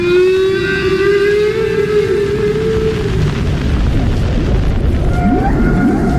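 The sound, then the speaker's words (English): Whale song: a long, drawn-out moaning tone with rich overtones slowly gliding in pitch, then short rising whoops, all over a steady low rumbling wash of underwater noise. “Almost unbelievably, this was the first time that anyone had ever identified the sound of a whale.”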